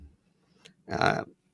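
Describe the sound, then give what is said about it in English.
A single short, throaty burp sounds, rumbling for under half a second, with a faint click just before it and near-silence around it. “Disgusting burps throughout the show.”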